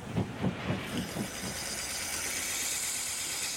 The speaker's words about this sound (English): The train has stopped. I can get off here.